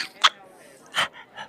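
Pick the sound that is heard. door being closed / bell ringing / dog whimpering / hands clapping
dog whimpering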